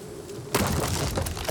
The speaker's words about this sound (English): It's a muffled door crash.